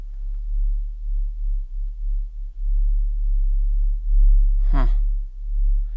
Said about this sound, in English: We met a guy in Windsor named Gary Gross, and Gary recorded some sounds that he says are the Windsor hum. All right, and listen to this.